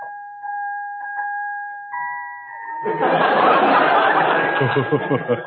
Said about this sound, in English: Don't be frightened, Bob. Ring the bell.